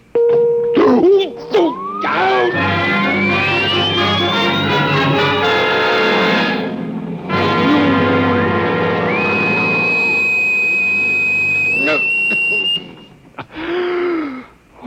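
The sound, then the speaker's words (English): A loud, harsh electronic buzzing drone from a vibration torture device set to vibration level 2 swells in, its whining tone sliding upward in pitch, holding steady for about ten seconds with a jump higher near the end before cutting off. “So go ahead. Vibrate. Vibration level 2.”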